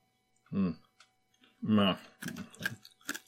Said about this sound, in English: I'm chewing into the microphone. Yeah, that is some caramelized sugar. Wow. This is really good.